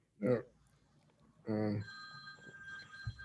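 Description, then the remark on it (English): A telephone rings with a steady, high electronic tone that holds for over a second, following two brief voiced sounds. It is moderately loud against a quiet background. “We've had that happen as well. We have phone calls.”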